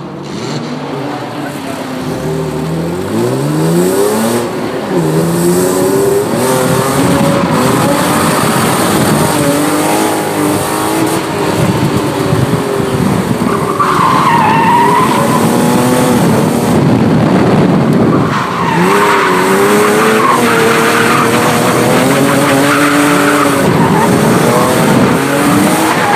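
A car engine roars up and down through the gears on a racetrack, loud and continuous, with brief squeals of tires through the corners.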